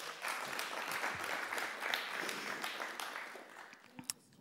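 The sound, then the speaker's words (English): An audience claps for a woman being introduced and invited up to speak, in a steady, dense burst of applause that holds for several seconds, then thins out and fades, with a few scattered final claps at the end. “We can give her a little clap.”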